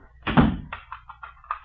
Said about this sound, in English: Why are you locking the door?